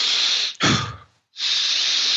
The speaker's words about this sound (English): So I then go through one practice. I do a couple cycles of Wim Hof breathing. You basically do that.